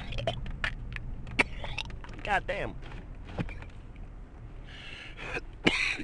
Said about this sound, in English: I'm going to cough in your ears.